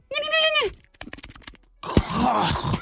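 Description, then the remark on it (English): A voice imitates two chickens squabbling over a lover: a high, wavering squawk, then a quick run of clicking taps, then a harsh, raspy, sputtering cackle that runs loud to the end. “Two chickens fighting over a lover.”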